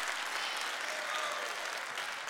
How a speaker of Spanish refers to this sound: Date tú un aplauso.